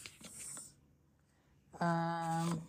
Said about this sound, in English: Let me shuffle these.